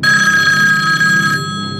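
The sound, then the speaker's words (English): A telephone bell in an apartment rings loudly and steadily, a bright metallic trill with strong sustained tones, with no voices, cutting off abruptly near the end. “She keeps calling the apartment.”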